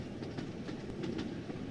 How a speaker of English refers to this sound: The rocking of the train, when reading, leaves me a trifle nauseous.